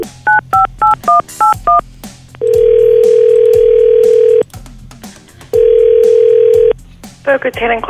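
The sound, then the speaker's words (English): Six quick touch-tone beeps as a phone number found on a bathroom wall is dialed, followed by two long, steady ringing tones on the line, with a voice beginning to speak right at the end. “What happens when you really call somebody with that?”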